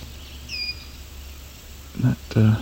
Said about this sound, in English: That eep, one of their calls, is a male red winged blackbird.